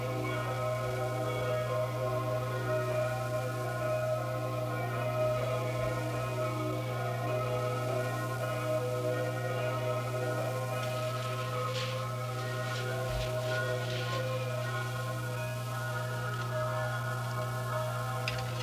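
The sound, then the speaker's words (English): Many bells in Switzerland ring together in a continuous, dense wash of overlapping metallic tones, sustained at a steady loudness with a low hum beneath and a few brighter clangs partway through, with people talking in the background. “We went off the air with the ringing of the bells of Switzerland.”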